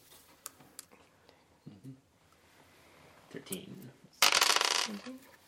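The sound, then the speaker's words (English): Dice clatter across a tabletop as a player rolls damage in a game: a few sharp ticks at first, then a loud burst of rattling that quickly stops. Soft, indistinct voices murmur in between. “Now go ahead and roll damage.”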